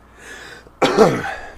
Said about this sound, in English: And of course, I had to cough. Of course. Now I got to find that and edit.